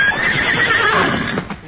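A horse lets out a loud whinny that rises and wavers for over a second, with a faint clatter of hooves beneath it and no voices.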